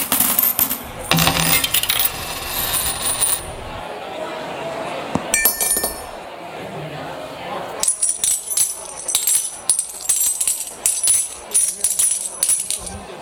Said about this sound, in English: So the sounds of the coin drops were different depending on the weight of the coins, like this.